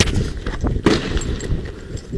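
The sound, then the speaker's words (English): A single sharp gunshot cracks out from a police service pistol amid a busy, rumbling background, standing out briefly before the steady noise carries on. “There you hear the shot from the service weapon.”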